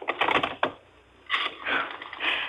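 A telephone being dialed, heard as two close bursts of rapid mechanical clicking with a brief quiet pause between them. No voices.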